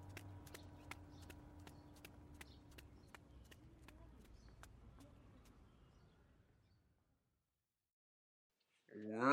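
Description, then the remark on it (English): Quick, evenly spaced footfalls of someone running alongside a scooter on the way to Bryan Park patter along over a low humming drone, both gradually fading until it goes quiet; a voice starts speaking right at the end. “But there's only room for one, so you gotta run alongside me.”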